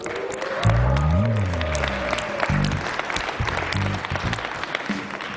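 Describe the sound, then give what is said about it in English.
A crowd at a chapel service at Nazarene Bible College applauds with steady, dense clapping, joined by a few low voiced murmurs and a brief rising vocal tone underneath the sustained applause. “The fact that you're clapping means that you're still glad to be here.”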